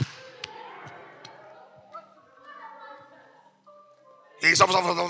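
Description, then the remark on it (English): A few sharp, sparse hand claps, done to show how some people clap, ring out with uneven gaps and fade into a soft hum, then a loud burst of voice breaks in at the end. “Now listen, don't be clapping away the things, because some of you clap like this.”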